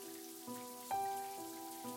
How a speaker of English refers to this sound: So you can imagine his surprise when he heard the sound of running water immediately upon uttering those words.